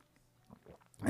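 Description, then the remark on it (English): A quick sip of coffee: soft slurping and wet mouth sounds, quiet at first and swelling into a louder gulp at the very end, with no one talking. “All right, let's have a sip of coffee and we'll say a quick prayer and get about our weekend, okay?”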